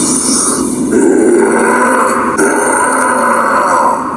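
A Bigfoot howl: one loud, sustained, rough bellowing cry with a gravelly growl, shifting pitch slightly about halfway through and holding strong for over four seconds, with no talking.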